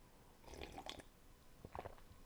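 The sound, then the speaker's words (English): Someone takes a couple of wet, noisy slurps of hot coffee, a longer bubbly sip followed by a shorter one, fairly quiet with no talking. “Me slurping down my coffee.”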